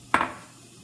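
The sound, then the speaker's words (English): Vegetables, including carrots, being stirred in a pan with salt and pepper: one sharp clack of a utensil against the pan with a short scraping tail, then near quiet. Nobody speaks. “So as I'm stirring, again, you know, if you've got any questions at all, please feel free.”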